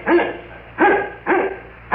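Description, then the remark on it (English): A dog named Wolf barks four times at the door in a steady rhythm, each bark loud and deep-toned with a quick rise and fall in pitch, and no voices alongside. “Now, there's a forceful character. Let him in before he breaks the door down.”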